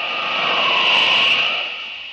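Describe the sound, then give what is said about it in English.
A speeding train travelling at 90 miles an hour gives a continuous rushing roar, hissy and bright, swelling slightly through the middle before easing off a little at the end, with no voices. “90 miles an hour. Good speed for a train, but it can't leave Superman behind.”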